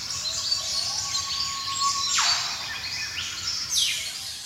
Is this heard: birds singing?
yes